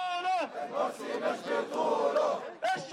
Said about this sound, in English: The people have decided, they chant, and God's Sharia law is their choice.